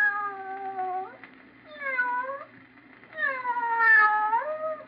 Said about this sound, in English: Hear that? Just a sound effect. But in your imagination, didn't you picture a cat meowing?